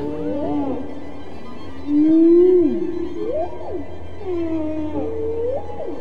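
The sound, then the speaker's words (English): Humpback whale song from Dr. Payne's whale recordings, part of the concerto And God Created Great Whales played by the New York Philharmonic: long, sliding moans and upsweeping whoops rise and fall in a slow, echoing sequence over a low underwater rumble, with no voices present. “Dr. Payne's whale songs are now part of a concerto called And God Created Great Whales, played this week for the first time by the New York Philharmonic.”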